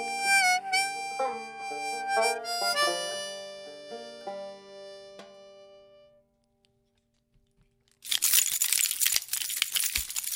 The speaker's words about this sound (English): I don't really need all these keys. I just bring them into the studio for sound effects.